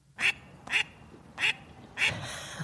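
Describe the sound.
A duck quacks four times in a steady rhythm, each call short, loud and nasal, with brief pauses between and a faint background hum.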